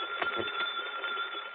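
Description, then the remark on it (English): A telephone rings with a steady, unbroken trilling bell tone for the whole moment, fairly high and even in loudness, with no voices over it. “Go on, answer it.”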